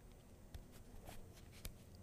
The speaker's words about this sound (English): So I'm about to do some angel cards with my mommy. I'm shuffling them right now. It's called Daily Guidance from Your Angels.